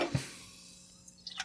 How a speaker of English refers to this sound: And that. That's not as nice of a sound. Satisfying. I poured a little much there, but here you go.